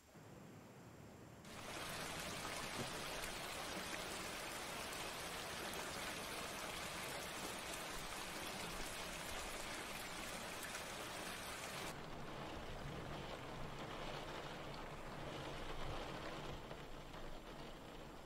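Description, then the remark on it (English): Steady, dense rain hisses outside, a broad continuous wash of droplets that stays loud and even throughout, easing only slightly toward the end. No one speaks. “It's raining outside.”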